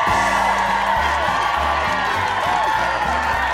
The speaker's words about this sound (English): That's some applause you got there.